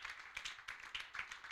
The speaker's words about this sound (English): Can you give the Lord a clap of it?